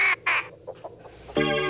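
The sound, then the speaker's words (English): Attacking birds in Hitchcock's film screech harshly: two quick raspy bursts, a few softer squawks, then a loud, sustained shrill cry that cuts in at the end. No one speaks. “Farewell to Rod Taylor, who battled Hitchcock's birds.”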